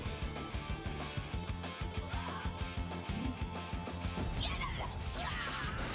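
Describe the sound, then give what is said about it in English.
A rapid string of loud, booming explosion bursts crashes over a driving soundtrack, with sweeping whooshes near the end, from a TV action scene in which a new Zord robot combination walks through the explosions. “See how I was just walking through all those explosions?”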